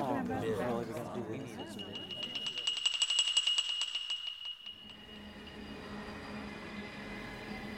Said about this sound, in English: Better get off or the train will start with us.